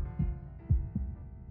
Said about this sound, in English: The heartbeat. It's returned.